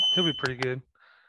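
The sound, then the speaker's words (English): A high, piercing smoke alarm beep sounds briefly at the start while a man talks over it, then fades out, leaving the voice and a faint hiss. “Nice fire alarm, smoke alarm.”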